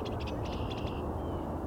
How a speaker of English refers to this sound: As you can hear, there's also a red-winged blackbird here